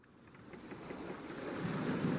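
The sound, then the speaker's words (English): Waterside ambience at a marina: a steady wash of waves and breezy wind noise that gradually swells louder over a couple of seconds, with no voices. “Oh my, we're in a marina, about to step aboard the UK's favourite Saturday morning TV chefs.”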